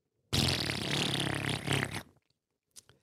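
A loud, drawn-out fart with a buzzy, rumbling texture lasts nearly two seconds, then cuts off, followed by a faint brief rustle near the end.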